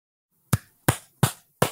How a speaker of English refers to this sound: That's me clapping.